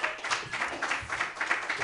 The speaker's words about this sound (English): Clap again, you guys. Yay.